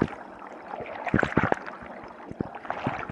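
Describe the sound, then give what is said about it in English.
Quiet water rippling and lapping, with a quick cluster of small splashy plops in the middle and a few scattered ones after, over a soft steady wash. No voices. “You hear a little bit of water moving around, like rippling.”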